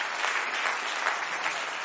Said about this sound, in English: Come on, clap your hand to the Lord and give him a little praise right now.